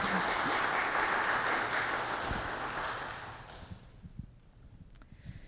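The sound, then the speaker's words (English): Audience applause fills the room with dense, steady clapping for about three seconds, then fades and thins out to a few scattered claps and quiet room noise. “I invite you to give you a round of applause”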